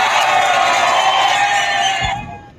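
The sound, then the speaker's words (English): An audience cheers and applauds at the live College Hockey Southwest Weekly show in Scottsdale, Arizona, in a loud, steady wash of whoops and clapping that holds for about two seconds, then abruptly drops away to near silence. “Thank you, thank you, thank you for such a beautiful round of applause.”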